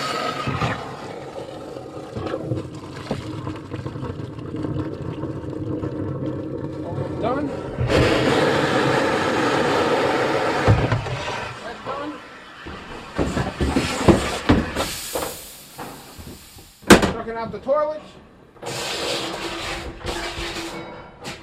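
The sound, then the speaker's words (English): A vacuum suction hose, run in two lengths through a window, roars steadily while pumping out toilets, with surging, slurping bursts and hissy gulps as the hose fills and the vacuum catches up, while a man talks briefly over the loud drone. “I just throw the suction hose in there and get it out as fast as I can.”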